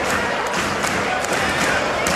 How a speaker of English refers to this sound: The crowd's getting anxious. They're ready to go.